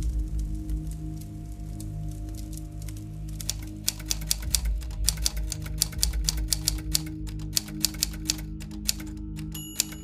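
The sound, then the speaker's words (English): Rapid typewriter keystrokes clatter in a quick, uneven rhythm over a steady low hum, starting a few seconds in and continuing with sharp clicks and occasional heavier strikes, as someone types as fast as they can. “I don't have a lot of time to explain how I got here, so I'm typing as fast as I can.”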